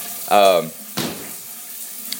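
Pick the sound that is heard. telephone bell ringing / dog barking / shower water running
shower water running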